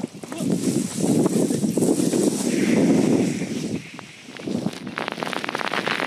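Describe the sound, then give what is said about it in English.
Tiny bits of volcanic rock from an ash cloud rain down in a dense, crackling patter of countless sharp ticks, like hard hail, over a steady rushing roar, with a human voice partly audible underneath. “You can hear the tiny bits of rock raining down.”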